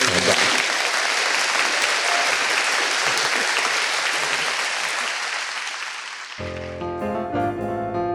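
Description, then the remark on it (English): An audience at the Fremont Abbey in Seattle breaks into sustained applause for Sean Brock and his book South, a dense wash of clapping that holds steady for about six seconds before fading as a bright musical sting begins. “Round of applause.”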